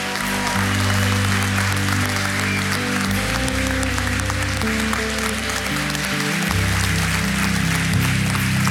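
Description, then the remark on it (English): A crowd claps steadily and loudly, with scattered whistles and cheers mixed into the dense applause, while sustained low musical chords play underneath throughout. “I just want to applaud, whistle, cheer for both of these who have made this declaration today.”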